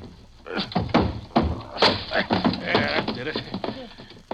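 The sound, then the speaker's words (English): A locked office door (Mr. Dizell's office) being busted open: several heavy, dull thumps and bangs in quick, uneven succession, followed by rattling and creaking as it gives way, with muffled voices mixed in. “Yeah, and it's locked, too. I'll bust it here.”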